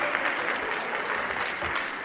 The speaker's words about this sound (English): Come on, a bit of Irish fire. Come on, brother. Praise the Lord. Give him a clap.